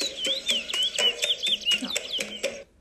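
Birds chirp and sing in quick repeated bursts, bright whistled notes layered over a busy, continuous background of chatter, moderately loud, with no talking.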